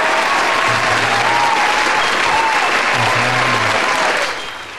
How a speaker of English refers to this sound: That was like a big applause. You like that? Yeah. It's everything's bigger in Texas, so we do it big here on this couch.